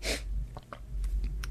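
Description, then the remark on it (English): A sudden breathy snort bursts out at the start as someone taking a sip of coffee nearly spits it all over a computer, followed by a few faint clicks and small mouth sounds over a low hum. “I was just taking a sip of coffee, and I nearly spit it all over my computer.”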